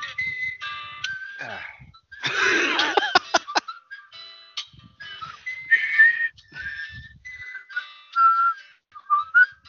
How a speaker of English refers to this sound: that is the whistle theme to Deadly Premonition, one of only 2 songs in the game